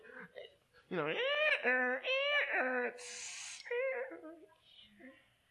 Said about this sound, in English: And WD-40 is one of the labels it says here, that WD-40 is used to loosen rusty parts. And it also stops squeaky noises. You spray it on a hinge,